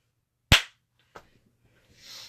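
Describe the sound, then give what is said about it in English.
A Skype slow clap sound effect: one loud, sharp clap followed after a pause by a second, much softer clap, then a faint hiss trailing off at the end. “Like, see, this is why I'm glad Skype still has the slow clap.”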